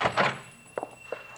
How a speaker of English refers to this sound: stand back. I'll open the door.